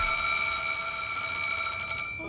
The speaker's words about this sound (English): And then right at the end of this incredible opening, we go into this extreme close-up of the alarm clock and Samuel Jackson's lips waking us up.